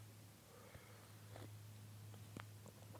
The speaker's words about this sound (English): First of all, let me take a sip of this tea.